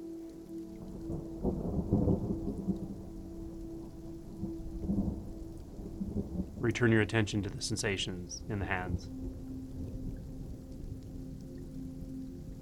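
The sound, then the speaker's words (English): Steady rain hisses throughout, with low rumbles of thunder rolling underneath, while a calm voice speaks softly over the downpour. “Keeping your attention there, take in the sound of the rain.”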